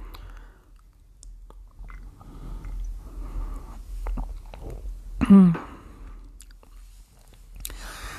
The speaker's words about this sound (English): I'm going to have a sip of coffee here.